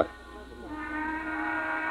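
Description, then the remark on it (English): The Burke Platt factory whistle blows: a brief swelling onset, then a loud, steady harmonic tone that holds its pitch without a break until the end, with no voices. “That's the Burke Platt factory whistle.”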